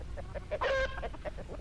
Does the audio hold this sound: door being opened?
no